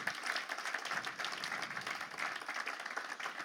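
A crowd at a church gathering applauds steadily to welcome two speakers onto the stage, many hands clapping at once in a dense, continuous patter that holds an even loudness throughout, without any voices on top.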